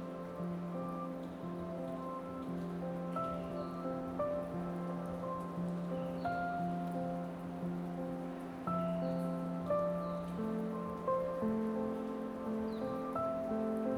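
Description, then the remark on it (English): Steady rain patters continuously throughout, a soft even hiss with scattered droplet taps, layered with sustained mellow tones and no voices. “Listen carefully for the wisdom inside the raindrops.”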